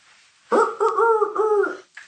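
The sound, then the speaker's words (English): A single rooster crow rings out, one loud, drawn-out harmonic call lasting over a second, wavering through its middle and trailing off at the end, with no voices around it. “Here is the rooster, begins to crow.”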